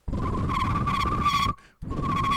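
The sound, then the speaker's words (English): A loud, breathy whistle imitates a car straining and squealing, holding one steady shrill pitch for over a second, breaking off briefly, then starting again. “The only thing I could do with whistling is when I was in the car with my mom when I was younger, I would do a noise that made her think the car was breaking down.”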